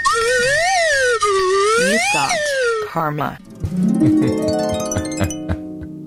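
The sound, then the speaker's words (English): A slide whistle swoops up and down in loud, wavy glides for about three seconds, then gives way to a busier jumble of shorter tones and clatter. “A slide whistle karma would be really cool.”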